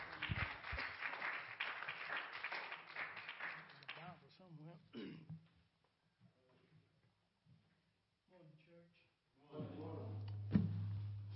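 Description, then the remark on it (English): A church audience claps hands in praise to God for the word, a dense burst of applause lasting a few seconds before fading into scattered voices, followed by a steady low hum. “Let's give God a hand clap of praise for the word.”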